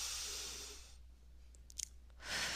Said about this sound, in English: All right, let's just take a deep breath so we can get back into the flow of love. Yes, just release all of the tension, all of the stress. Anybody trying to push your buttons earlier, just release it and let go. Let's just take one more deep breath.